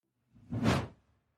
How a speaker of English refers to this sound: Out and then back in. It's like a double swoosh.